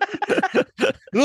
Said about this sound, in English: Yeah. A choke coughing. Something's gone down my throat. Something's hit straight at the back of the throat. The lid in my mouth. It went down the wrong hole.